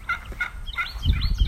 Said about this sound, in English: Turkeys are a little noisy today.